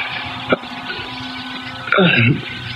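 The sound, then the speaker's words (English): A sudden loud collision, a car slamming broadside into a truck, bursts out near the end over a steady hiss, with a short sharp knock just before and a brief, harsh metallic roar. “we hit that truck broadside and...”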